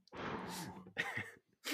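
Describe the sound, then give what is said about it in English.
Heavy, forceful breathing: a long deep exhale, a shorter rough breath, then another beginning, loud and raspy with no talking. “Aggressive breathing.”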